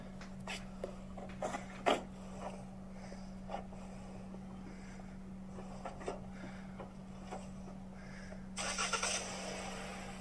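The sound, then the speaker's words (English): A car engine hums steadily beneath scattered clunks and knocks in a parking lot, then a harsh burst of revving noise near the end as the vehicle starts moving off. No one speaks. “The guy gets in the car, he's about to skirt off and just start hitting shit, crashing into shit.”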